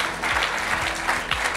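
A steady burst of audience applause, many hands clapping together in a dense, continuous patter that fills the short moment at a fairly strong, even level.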